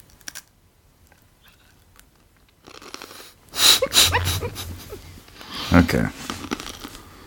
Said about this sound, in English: Are you done crunching?